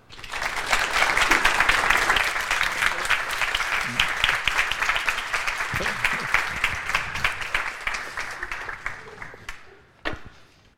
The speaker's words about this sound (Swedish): Med det sagt så återstår det bara för mig och er härinne att välkomna gäster och moderatorer upp på scenen. En varm applåd.